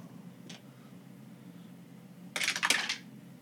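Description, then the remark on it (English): Dice rattle and clatter across a surface in a quick burst of sharp clicks lasting under a second, after a single faint tap, over a low steady hum with no talking. “Let's roll for it.”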